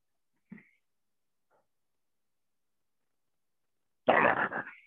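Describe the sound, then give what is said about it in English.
A puppy whimpers: a short, faint squeak early on, a long quiet pause, then a loud, whiny burst of cries at the very end. No one speaks. “So that's the little guy that has been whimpering.”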